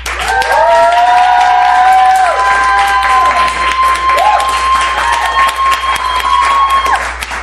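An audience bursts into loud, sustained clapping with whoops and high-pitched cheers rising above it, voting by applause for the winner of a debate, the dense applause holding steady for several seconds before thinning slightly near the end.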